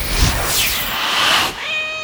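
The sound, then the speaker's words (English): A voice imitates the meow of Lady, a silvery-furred cat that a character turns into: a long, wavering, drawn-out mew that rises and falls, trailing into a thinner, steadier whine at the end, with no other talking. “Can I turn into Lady? The cat?”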